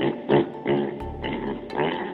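A pig oinks and grunts several times in quick, uneven bursts, fairly loud, with no one talking.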